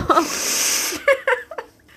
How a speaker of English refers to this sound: I'm going to blow my nose.